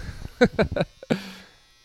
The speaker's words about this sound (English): And also, I hope you're enjoying the sounds of my laundry. I'm recording this at my parents' house.